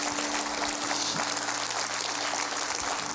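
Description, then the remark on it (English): A church audience claps hands in tribute to a late church member, in steady, dense applause, a continuous crackling wash of many overlapping claps with no pauses and no voices standing out. “Would you give a hand clap for him right now, all over this house, all over this house.”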